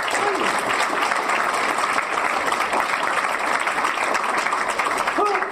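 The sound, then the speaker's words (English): An audience applauds a panelist steadily for several seconds, a dense, even wash of many hands clapping at a constant loud level, with a faint whoop or cheer rising briefly near the end. “Give Venus a round of applause.”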